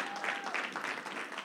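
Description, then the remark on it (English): An audience claps to honor two people, a dense continuous wash of many hands with no single claps standing out, moderately loud and slightly thin. “Come on, give them a hand clap.”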